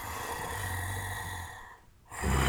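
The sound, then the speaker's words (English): A voice imitates a deep, throaty growl: a sustained low rasp on the out-breath, a brief gap, then another rough rumble starting on the in-breath, fairly loud. “You got a deep throat sound like whenever you're growling.”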